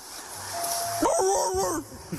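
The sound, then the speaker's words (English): A man's voice mimics a dog, giving a couple of bark-like yelps with a sliding, whiny pitch over a faint hissy background. It sounds plainly human and not very convincing. “How high were these kids to think that was a good-sounding dog?”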